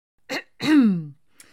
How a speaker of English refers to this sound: He coughed, both to clear his throat and to gain their attention.